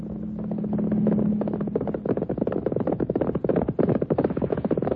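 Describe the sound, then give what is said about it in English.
Horse hooves gallop in a fast, steady, loud drumming rhythm, following a brief sustained low hum at the start. “On horseback.”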